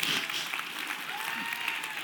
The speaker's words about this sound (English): So would y'all mind applauding for the Lord one more time?